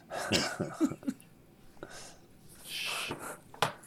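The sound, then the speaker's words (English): A person coughs and clears their throat several times in rough, irregular bursts, with a raspy phlegmy quality and short breaths between, and no speech; an itch in the throat that goes away only after coughing out phlegm. “like out of nowhere, I'll have this like itch in my throat, and then I can't get rid of it unless I cough out some phlegm.”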